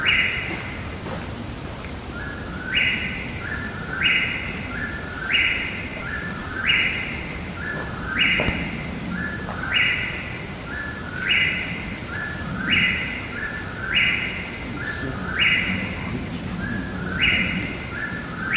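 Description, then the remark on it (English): A bird in the woods calls over and over in steady rhythm, each call a bright two-part phrase repeated roughly every second, clear above a low outdoor background hum, with no talking. “That bird would not shut up. It's the most dastardly thing in the woods.”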